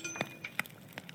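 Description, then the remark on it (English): Dice clatter across a hard surface in a quick burst of small, sharp clicks, several bright taps spaced unevenly over about a second, fairly quiet with no voices. “give me the roll. Like, come on, don't screw it up. I'm going to use your dice.”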